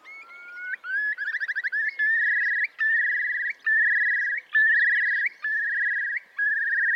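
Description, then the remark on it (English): A curlew's bubbling mating call, sung in the mating season as the bird rises into the air: a loud rising whistle breaks into quick pulsing bubbles, then a run of long, steady high trills, each briefly cut off and restarted, with no one talking. “Or in the particularly at the mating season, they sing this wonderful trilling, rising, bubbling sound, which they call as they rise into the air.”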